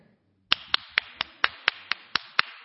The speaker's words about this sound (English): Clap.